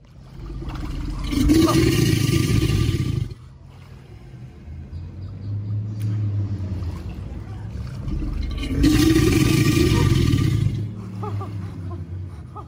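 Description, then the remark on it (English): A single alligator gives two long, deep, rumbling bellows several seconds apart, each a loud throaty roar, with a lower guttural drone continuing in the gap between them. “Here's what this sounds like when one alligator does it.”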